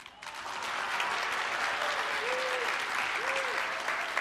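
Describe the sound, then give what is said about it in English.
An audience applauds steadily for about four seconds at a picture of a puppy, a dense wash of clapping with a couple of brief vocal 'aww'-like murmurs rising through it. “I heard some people, before they even clapped, they were like, oh, like that.”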